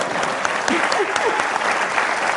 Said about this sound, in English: In recognition, that's an applause line.